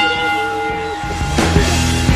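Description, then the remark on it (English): A bell rings with a steady, sustained metallic tone, joined partway through by a few sharper struck hits that add a brighter clang over the lingering ring. No voices are heard. “ring the bell!”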